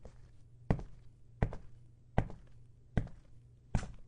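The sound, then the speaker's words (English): Shoes walk steadily across a wooden floor, five distinct footsteps at an even, unhurried pace, each a solid knock with a short hollow body, clear with no talking. “Now, a lot of these sounds were pretty simple to achieve, like shoes walking on a wood floor.”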